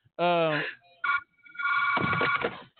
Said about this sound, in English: damn, dude, the ringer off. But damn, why you still got one of a phone that still got a ringer on it? That's my office phone, man.